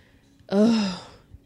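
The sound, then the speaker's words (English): A single sneeze bursts out suddenly, a sharp breathy blast with a voiced, tonal edge that fades within about half a second, with quiet before and after. “That was the worst. Bless you.”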